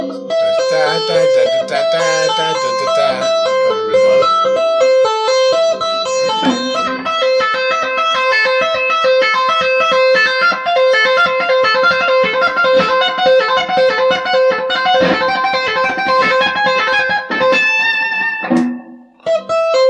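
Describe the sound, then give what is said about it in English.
Electric guitar playing fast tapped runs of bright, distorted notes that shift quickly in pitch, with a steady, loud, continuous rhythm lasting the whole passage and briefly dipping near the end. “A bit of practice, but it's quite effective because it kind of it has a slightly different rhythmic vibe, yeah, you know, with the whole tapping.”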